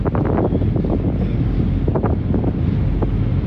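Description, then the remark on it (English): Steady, loud low rumble of a river boat underway, having just left Greenwich, with wind buffeting the microphone in gusty bursts throughout; no one speaks. “We're about the only people on the boat.”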